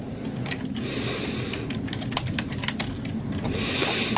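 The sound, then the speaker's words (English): Rapid, irregular clicks of typing on a computer keyboard, fairly steady, with a low background hum and no one speaking, as someone looks up information. “There's a typing pull to let us know.”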